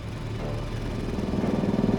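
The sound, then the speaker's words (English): A steady mechanical engine drone with a low, throbbing hum that grows slightly louder and develops a rapid pulsing rhythm: a compression pump powering a drill boring down into a mine shaft. No voices. “Then, through the noise of the compression pump powering the drill,”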